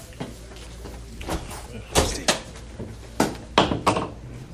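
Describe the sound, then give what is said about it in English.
A door being opened, with a string of sharp clunks and knocks from the latch and handling, over a steady low hum of room noise. “Open the door a little bit.”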